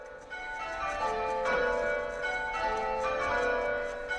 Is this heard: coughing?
no